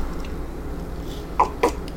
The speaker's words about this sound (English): What the fuck? I burped and it burned the back of my head.